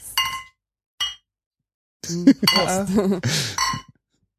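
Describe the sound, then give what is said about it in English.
Two bright glass clinks ring out as glasses of Jever beer meet in a toast in Berlin, the second shorter, followed by voices chattering and laughing. “Everything is cheap, so we get bigger beers. Yeah. Thank you.”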